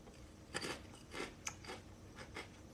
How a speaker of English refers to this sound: This is a great idea. The crunch on here is like you have an ice cream cone.